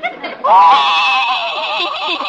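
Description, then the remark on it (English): A loud, quavering whinny drawn out like a sobbing wail, lasting about two seconds, apparently a human voice imitating a horse named Silver Moon crying. “I can't stand to see a horse cry.”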